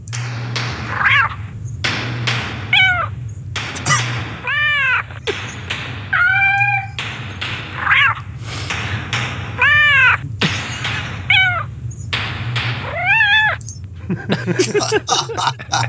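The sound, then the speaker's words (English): An alarm sound called Battle Cat: a series of loud, drawn-out cat yowls and meows repeats in quick succession over a steady low hum, ending with a burst of sharp rapid clicks. “This one's my favorite. This is his. It's called Battle Cat.”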